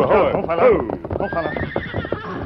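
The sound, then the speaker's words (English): The horses of the Lone Ranger and Tonto, one named Scout, whinny loudly at the start, their shrill neighs rising and falling, followed by a steady run of clopping hooves, with the busy sounds continuing without pause. “It was almost an hour before the Lone Ranger and Tonto shook off the Indian band and stopped to rest their horses some miles from their camp.”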